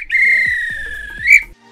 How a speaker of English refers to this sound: This is when the ref would blow the whistle because it's offside.